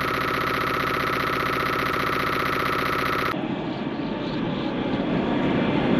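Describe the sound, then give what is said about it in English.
Audio from the video game MDK, with wind, lasers and a chimpanzee: a loud, dense buzzing electronic drone with stacked harmonics cuts off abruptly after about three seconds into steady rushing, wind-like noise that continues to the end. “Some wind. Some lasering. Monkey. A monkey.”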